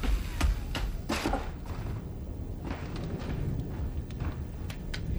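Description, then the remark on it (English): A door is pushed open, with a few sharp knocks and clunks over a steady low rumble, then quieter scraping movement as it settles. “Here's the door.”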